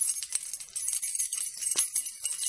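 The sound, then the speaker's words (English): Keys jangle in a pocket as a man at his car fumbles for them, with a steady run of small, bright metallic clinks and rustles, fairly soft, with no voices. “The lone man reached the car, stopped and fumbled in his pocket for keys.”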